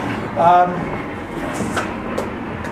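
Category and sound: vehicle, airplane taking off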